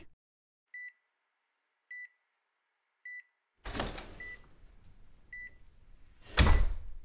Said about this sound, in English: All these machines beeping, you know, it can be stressful.